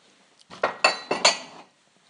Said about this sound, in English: I'm going to put a cup away, which is called The Office Dog's Body in big letters, right next to the one that says, "I love New York."